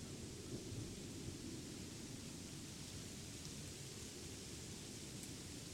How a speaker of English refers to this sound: Step closer to the storm as it intensifies. The winds becoming more powerful and the rain pouring down heavily.